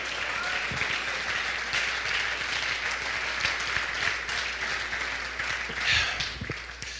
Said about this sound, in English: I want you to stand to your feet and clap your hands right now and say, I was designed to win.